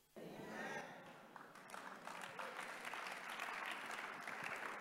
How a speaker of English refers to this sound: Every hand that is clapping, God will remember them.